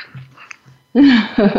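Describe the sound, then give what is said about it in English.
A person's voice imitates a dog's bark with a loud, gruff vocal burst after a quiet moment, followed by a second shorter burst. “Like in dog training, drop it. Woof.”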